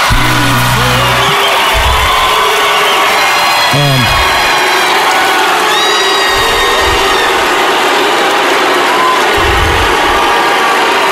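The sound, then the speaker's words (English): A large crowd at the CMA Awards roars in a sustained, dense wash of voices as the Male Vocalist of the Year award is announced, with low drawn-out chanting of the winner's name that sounds like booing rising and falling beneath scattered shouts and whistles. “This is, okay, it definitely sounded like boos.”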